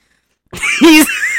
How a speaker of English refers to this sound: I blow my nose.